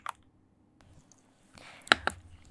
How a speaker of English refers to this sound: Okay, I'm just gonna give you some mouth sounds over this typing. I usually don't type this fast. I'm actually a really slow typer. 60 or 70 plus words per minute.